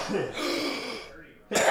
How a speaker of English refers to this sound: No, that's probably because okay, I'm allergic to cats, so yeah, that's well, probably why. I have a smoker's cough